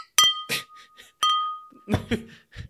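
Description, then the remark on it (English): Two bright glass clinks about a second apart, each leaving a short ringing tone, followed by soft voices or laughter. “So cheers to all the breweries doing this, and cheers to AllTogether. Cheers.”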